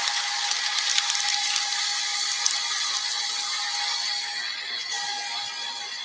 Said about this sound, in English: But the way the crowd was so just patient. Yes. And like, because that couldn't have been edited out to quiet them. Like, look how, listen to this. There's nothing except the zzz of the fucking paper.